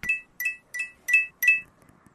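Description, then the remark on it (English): Coins, 25 in all, clink five times in a steady rhythm, each strike a bright, high metallic ring that fades quickly, with no voices. “25 coins.”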